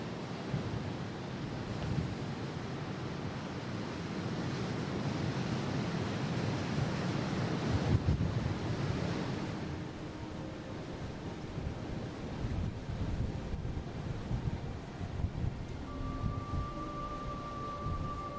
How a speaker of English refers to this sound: Anyway, here's a track in the middle of the Saddle, with the ocean either side and very strong winds blowing between this narrow gap.